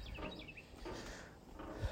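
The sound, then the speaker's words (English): Birds chirping outdoors, heard from a porch, with a quick run of high, bright tweets near the start over a steady hiss of background noise, with fainter chirps following. No one speaks. “Oh, listen to the birds, dude. You don't hear that out west.”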